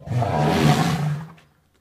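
A single loud, deep elephant call, a rough roaring bellow lasting just over a second before fading out abruptly, with no voices.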